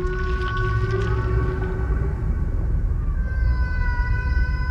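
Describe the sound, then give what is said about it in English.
A whale call of long, drawn-out moaning tones that hold steady and then shift higher partway through, sounding over a constant deep underwater rumble with no voices. “A giant whale comes out of nowhere and swallows him.”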